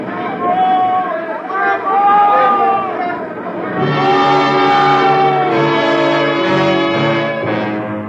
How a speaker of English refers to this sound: Then there was one night when shouting on deck woke me up.